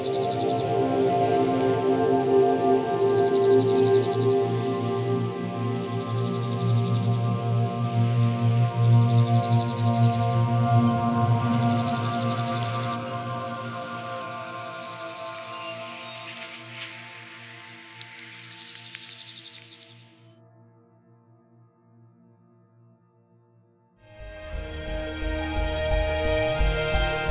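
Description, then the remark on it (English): A songbird delivers a rapid, high trill about seven times at steady intervals over a low rumbling background. The singing then stops, and a different, broader sound starts near the end. “Their song is a trill, similar to that of the chipping sparrow and the pine warbler, except loud enough to be heard several hundred feet away.”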